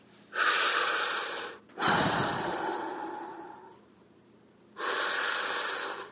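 Three loud breaths in a slow rhythm during a deep breathing exercise: a long noisy inhale, a deeper exhale that trails off, then another full inhale after a brief pause. No talking.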